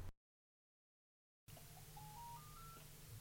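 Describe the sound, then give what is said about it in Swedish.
A quick run of six keypad beeps on a mobile phone, stepping upward in pitch and evenly spaced after a moment of silence, as the building's door intercom is answered on the phone, over a low steady hum in the background. “Porttelefonen går till min mobil.”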